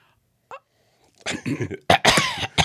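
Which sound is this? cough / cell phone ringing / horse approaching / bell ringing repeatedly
cough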